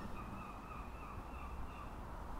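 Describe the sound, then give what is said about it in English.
Two seagulls sitting on the roof of a house opposite call faintly in Rhyl at 1:30 in the afternoon, their cries drifting over a steady outdoor hum, with no one speaking. “I haven't just woken up, but the seagulls are still calling.”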